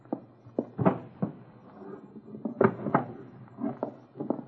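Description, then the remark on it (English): The bottom drawer of a wooden dresser is pulled open and pushed shut, with a series of irregular clunks, knocks and brief scraping rattles spread across a few seconds, no voices. “The gun. In the bottom drawer of the dresser. I'll get it.”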